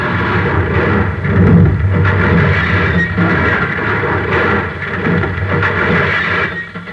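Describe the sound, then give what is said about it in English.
A car swerving to avoid an oncoming car on a hill road crashes and tumbles down a hillside: a loud, sustained roar of rumbling, crunching and scraping noise that churns on for several seconds with no voices. “Then turn. Hang on. We're going over.”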